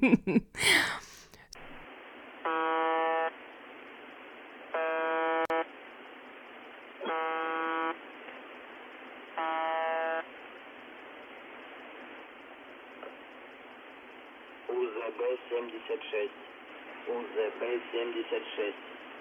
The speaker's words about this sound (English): So, station UVB-76, also known as the buzzer. This station broadcasts a short, monotonous buzz tone, repeating at a rate of approximately 25 tones per minute, 24 hours a day.